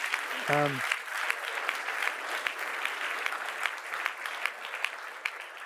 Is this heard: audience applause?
yes